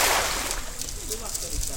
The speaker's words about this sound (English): a Malay fisherman from a nearby village, tosses a metal net onto the river and watches it fade beneath the water's surface.